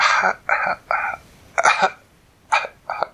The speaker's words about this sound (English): She coughed.